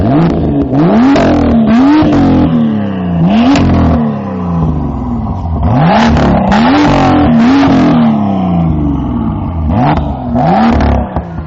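A loud BMW M2 sports-car engine revs repeatedly through its sports exhaust with the exhaust flap opened, each rise climbing sharply then dropping back, with crackling exhaust pops between blips and no talking over it.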